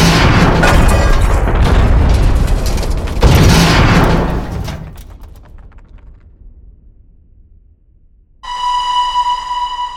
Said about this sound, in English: At 5:27 p.m., Friday, February 4th, 1977, Martin's train collided with the one in front of him.